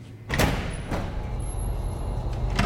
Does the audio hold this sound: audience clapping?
no